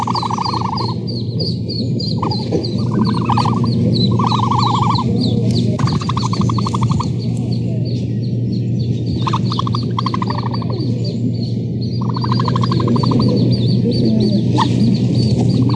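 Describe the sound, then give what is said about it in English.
A baby ostrich calls to other chicks with repeated short, warbling mid-pitched calls in bursts of about a second, over a steady low rumble and thin high chirping from other birds. “The baby ostrich makes this sound to call to other chicks.”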